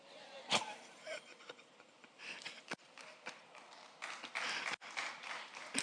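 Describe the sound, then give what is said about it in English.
Sparse, faint applause from an audience holding pens in their hands: scattered, irregular claps that never build into a full ovation, quiet, with no talking over them. “I know you have your pens on your hand, so you can't clap well.”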